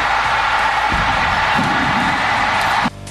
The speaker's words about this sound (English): Real crowd noise, too. Not pumped in. Yeah, just great stuff right there.